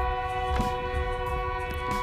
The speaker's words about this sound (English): We got a train coming by.